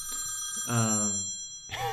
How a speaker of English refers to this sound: I guess even on Do Not Disturb. Phone calls come through because they are important.